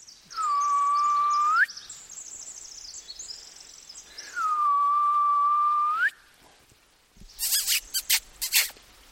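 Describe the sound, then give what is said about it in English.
A person imitates the contact call of another owl in the territory to reach endangered owls, whistling two long, steady owl-like calls, each a mid-pitched tone that swoops up at the end, separated by a pause, followed by a brief run of sharp squeaky clicks. “He waits, but no response, so he reluctantly makes a call like another owl in the territory.”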